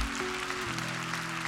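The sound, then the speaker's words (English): Steady, dense clapping from a crowd in an auditorium, praising God, a continuous wash of many hands at once with a low sustained musical tone humming underneath. “And with all of us, all over this auditorium, just because you believe it and because God has shown it to you, begin to praise God for it. Clap your hands and thank God.”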